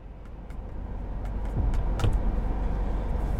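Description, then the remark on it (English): A car's low, steady engine rumble in a casino parking lot, with a few small clicks and a brief rising whine near the middle. No one speaks. “I made the drive, parked the car, and I waited.”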